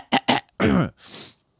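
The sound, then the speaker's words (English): A person clears their throat up close: two short rough bursts, then a longer gravelly rasp and a breathy exhale. No talking. “I gotta clear my throat. Let me clear my throat.”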